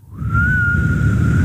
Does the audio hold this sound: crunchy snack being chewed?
no